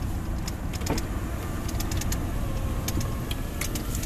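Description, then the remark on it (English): A pickup truck engine idles steadily, a continuous low rumble with faint clicks and ticks scattered over the top, no voices present, as the truck heads back through the Pennsylvania countryside carrying black walnut and pine wood. “So I got a bunch of black walnut and pine in the back of the truck here”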